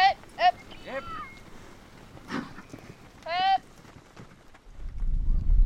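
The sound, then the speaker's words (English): Outdoor historic cattle drive, the Green River Drift, where ranchers move their cattle up into the mountains to graze for the summer: horse hooves clip-clopping, broken by a few loud, drawn-out animal or herding calls, then a rising windy rumble near the end. “It's this amazing historic cattle drive.”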